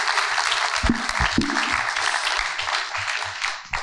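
A crowd applauds steadily, a dense wash of many hands clapping at once with no clear rhythm, holding a fairly even loudness throughout. A few low vocal sounds poke through briefly.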